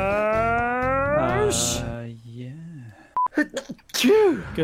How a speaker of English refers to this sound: Gesundheit.